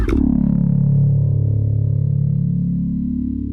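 A single sustained bass guitar note rings out alone through a phaser set to sine wave at its slowest speed with the mix turned way up, its tone slowly swirling and shifting, fading gradually over a few seconds.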